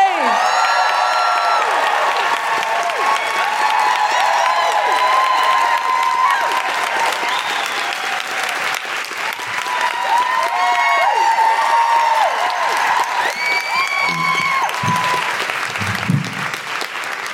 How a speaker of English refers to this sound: They didn't cheer quite as loudly for me, I notice.